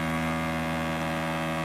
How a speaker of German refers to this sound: Was natürlich keine Hupe ist, sondern ein Nebelhorn.